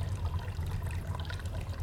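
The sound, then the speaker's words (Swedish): Steady bubbling and gurgling of an aquarium in a restaurant, a continuous low churning with faint trickling on top, fairly quiet, with no voices. “Och under tiden så bubblar det olycksbådande i akvariet på restaurangen.”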